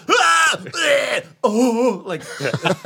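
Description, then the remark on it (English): A voice imitates a weightlifter straining, letting out a series of loud, drawn-out grunts and groaning yells in several bursts, the pitch rising and falling with effort. “Would he yell though while he was doing this? Like, no, but some guys do shit.”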